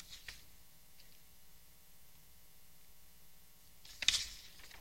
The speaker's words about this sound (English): I'm really picking up paper noise and everything in here when I move my paper. I don't normally hear it quite that loud.